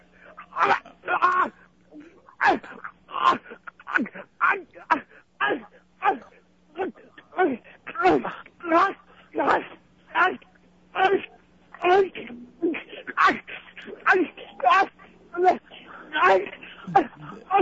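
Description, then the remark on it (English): A man on all fours grunts loudly and repeatedly, short strained vocal bursts coming in a fast, steady rhythm, heard about four feet from a dropped phone, with a faint low hum running underneath. “is on his all fours right now. Grunting.”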